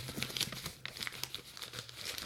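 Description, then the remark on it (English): Gift wrapping crinkles and crackles as it is pulled open from a present, a poo-shaped crumb vacuum; a dense run of sharp, bright rustles with a few tearing bursts, continuing steadily for a couple of seconds with no voices. “Oh, isn't that some sweet crinkle?”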